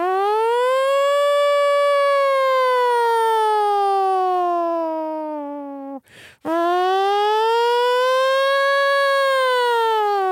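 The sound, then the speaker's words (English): A voice imitates a wailing nuclear warning siren: a loud, sustained tone that slowly falls, breaks off for a quick breath, then swells back up and holds. “But it's like, those fucking nuclear sirens are horrifying.”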